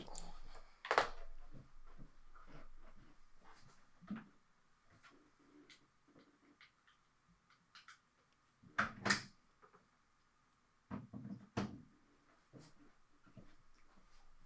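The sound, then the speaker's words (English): A computer charger is plugged back into a wall outlet it had come out of: fumbling and rustling with several sharp plastic clicks and knocks, with louder clatters near the start, middle and end. “Give me 1 sec, because I got to make sure my computer's plugged in.”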